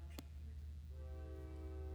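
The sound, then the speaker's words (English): A train horn sounds outside, a steady, sustained tone that starts about halfway through and holds to the end over a low, constant rumble, after a brief sharp click. “See? The train agrees.”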